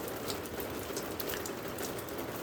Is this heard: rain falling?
yes